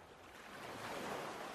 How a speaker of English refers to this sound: Oh, that was probably a big old wave.